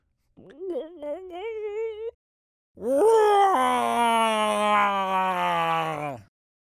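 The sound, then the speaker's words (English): A voice imitates the giant monster Rodzilla's sobbing cry, echoing through the streets: a shorter wavering wail, a pause, then a long, loud, ear-splitting bawl that swells and slowly sinks in pitch. “It's an ear-splitting cry. Rodzilla's sobs echo through the streets.”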